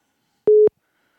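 A phone call alert sounds as one short, steady electronic beep at a mid pitch, fairly loud, on its own with silence before and after and no voices.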